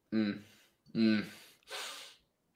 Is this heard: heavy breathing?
yes